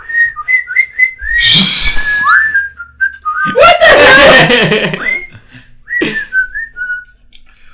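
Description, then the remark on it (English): A person whistles a short, wavering melody, broken off twice by loud bursts of laughter, with a brief spoken exclamation before the whistling resumes and fades out. “Why do you make fun of me when that was what your whistle was?”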